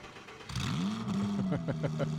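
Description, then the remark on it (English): A car engine cranks to life and revs with a deep, loud, throaty rumble from a heavy muffler, its pitch rising then holding steady. “did you upgrade the muffler on your car?”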